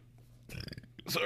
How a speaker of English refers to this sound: A free little burp there for you guys.